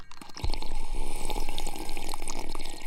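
A man takes a drink: after a brief quiet moment, steady wet sloshing and gurgling of liquid runs for about two and a half seconds, fairly loud, with no talking.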